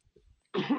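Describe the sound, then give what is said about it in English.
A single sudden, loud sneeze bursts out after a brief near-silent lead-in, its harsh breathy noise lasting a moment. No one speaks. “Bless you.”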